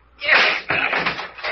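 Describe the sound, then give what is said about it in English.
A locked door being forced open: two heavy crashing impacts about half a second apart, each trailing into loud rattling, splintering noise that continues to the end. “She's giving. She's giving away.”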